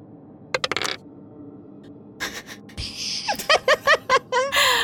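Dice clatter across a hard tabletop in a quick burst of sharp clicks, with another short rattle later, followed by rhythmic bursts of laughter; the dice are rolled for an intelligence saving throw and land on a three.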